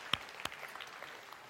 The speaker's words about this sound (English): All right, hey, give these people still standing a round of applause for living in the country.